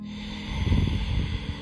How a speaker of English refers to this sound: We're breathing nice and deep. Let's do two more breaths in and out through our nose, just gently swaying like that willow tree.